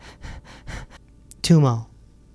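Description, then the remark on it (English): A person rapidly and forcefully panting, about five quick harsh breaths in a row, ending in a loud voiced gasp; a deliberate demonstration of chaotic, hyperventilating breathing. “You do chaotic breathing. Like hyperventilating. You get yourself to hyperventilate.”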